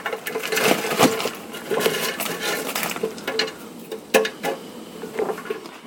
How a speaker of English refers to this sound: Shut the fryer off. Listen to this. Homemade chips out of the fryer. Let me pour them in.